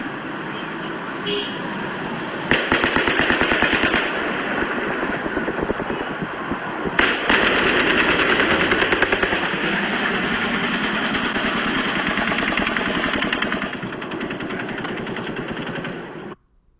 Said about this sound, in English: You can hear the gunfire overlapping in the distance. Now, what you heard there was overlapping gunfire. What you heard is one police officer screaming under gunfire that there's shots coming from Mandalay Bay. He's saying halfway up.